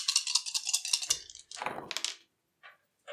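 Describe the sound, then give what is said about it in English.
Four dice, rolled for a Dexterity check, rattle in a rapid, uneven clatter of bright clicks, then spill out in a louder tumbling burst that settles into a few faint, scattered clicks. No one speaks. “Dexterity. Which is four dice.”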